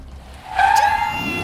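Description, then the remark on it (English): A car's tires screech in a loud, sustained high squeal that starts abruptly partway through, with an engine building underneath as the car accelerates out of a garage and past a building. No one speaks. “You go screaming out of the garage and out past the building.”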